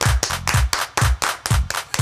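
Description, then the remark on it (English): A group claps hands along to a dance song in a steady, quick beat, about nine sharp claps in two seconds, with a thumping low bass beat running underneath and no talking. “Everybody clap hey. Your hands.”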